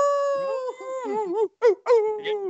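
A person howls like a wolf, one long wavering cry that breaks into a few shorter yelping howls before trailing off.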